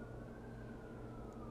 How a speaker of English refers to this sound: Can you hear those sirens?